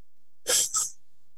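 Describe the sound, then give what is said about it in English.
Two quick, forceful breaths, one right after the other, breathy and hissing with a short gap between them, a double inhale-then-exhale breathing exercise. No one speaks. “Double inhale, exhale is really good if anybody does that.”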